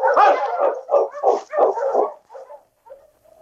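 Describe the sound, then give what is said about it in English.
A dog barks in a rapid, excited burst of about six or seven loud yelping barks, then trails off into softer whimpers and whines. “Some dog you got, Sergeant, believe me.”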